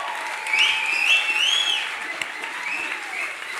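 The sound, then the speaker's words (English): An audience at a live show applauds a guest steadily for a few seconds. It is a dense wash of clapping with a few high whistles rising over it early on, easing off slightly toward the end. “And can we have a huge round of applause for the spectacular Nellie Thomas?”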